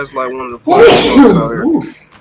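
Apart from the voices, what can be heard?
sneeze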